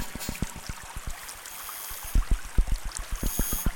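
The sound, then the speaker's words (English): Water flowing along a stream, with a steady hiss and a quick series of gurgling splashes and plops that grow louder toward the end, with no voices. “And although the rains have become a bit more episodic, these streams seem to stick around for later parts of the year, which is quite positive in a way.”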